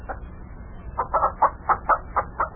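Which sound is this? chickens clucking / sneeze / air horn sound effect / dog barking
chickens clucking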